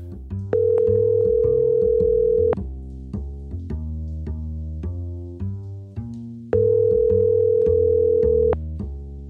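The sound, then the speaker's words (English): An outgoing phone call from Los Angeles rings out unanswered: two long, steady ringback tones about four seconds apart, fairly loud, with soft music playing underneath throughout. “How can he not answer the phone?”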